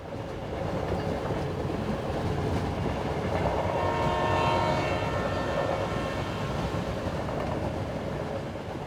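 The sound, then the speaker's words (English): An old, worn passenger train packed with travellers heading to Machu Picchu rumbles steadily along the rails, a dense, continuous mechanical roar with a brief tonal horn-like swell in the middle. Fairly loud, with no talking. “There was a great atmosphere in the train, a really old and knackered workhorse of a thing, and it was of course packed full of other travellers all heading to see Machu Picchu.”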